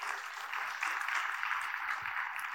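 A crowd claps in a steady, dense round of applause that holds at an even level for a few seconds, a bright rustling patter of many hands with no voices over it.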